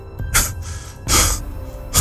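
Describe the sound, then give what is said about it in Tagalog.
Heavy, breathless panting after running: three loud, rough breaths spaced roughly every three-quarters of a second, each a gusty hiss, with no talking. “Hingal na tanong”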